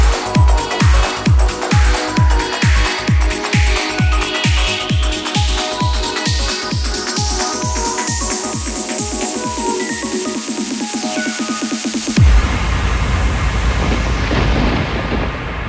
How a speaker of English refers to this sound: Oh, that thunder was recorded out of my bedroom window when I lived in Cambridge. Oi, I hope you know, God has got copyright on that. Yeah, God's got copyright on that thunder.